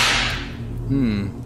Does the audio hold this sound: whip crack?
yes